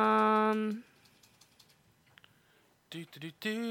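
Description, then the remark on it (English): Soft, scattered typing clicks on a computer keyboard fill a quiet pause, faint, with a voice briefly sounding before and after the tapping. “You were like typing things.”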